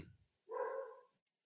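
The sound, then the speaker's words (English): A single drawn-out bark from a pup, clear, rising suddenly and holding for under a second before cutting off into silence. “And the pup agrees.”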